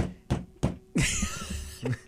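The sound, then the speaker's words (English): A fist pounds down vertically on an expensive chair, tapping twice in quick succession with soft, dull thumps, then a heavier hit brings a longer creaking rustle and one more muffled thump. No one speaks. “That time it was more of like a, you know, like. It was like a love tap. Pound your fist like down, like vertically.”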